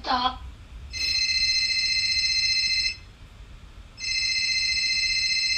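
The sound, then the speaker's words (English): A phone ringtone rings in two bursts of steady, high electronic tones, each about two seconds long with a brief pause between, loud over a low background hum. “I'm about to say, where's my phone?”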